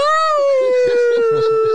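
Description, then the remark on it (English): A person weeping lets out a long, loud wolf-like howl at the moon, one sustained note that slowly sinks in pitch while someone keeps talking underneath it. “I started weeping uncontrollably and howling at the moon.”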